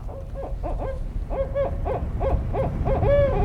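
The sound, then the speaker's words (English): A barred owl that has just flown in hoots in a quick, rhythmic series of rising-and-falling notes, ending in a drawn-out call, heard clearly over a steady low outdoor rumble with no talking. “There's a barred owl right there.”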